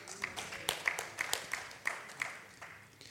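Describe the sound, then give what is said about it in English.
Scattered audience applause: quiet, uneven hand claps patter irregularly for a few seconds, with a handful of sharper claps standing out. No voices are heard. “I believe that clapping is in affirmation of what you can do and who you can be in the Lord.”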